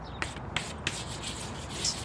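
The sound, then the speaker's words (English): Scratchy rubbing strokes across a hard surface as a spell circle is drawn on a door, like chalk: three short sharp scrapes, then a steady gritty rub that swells near the end. No one speaks. “Are you drawing a spell circle on the door?”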